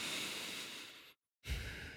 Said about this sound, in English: But I'd ask all of you who are listening, do this for me. Take a deep breath.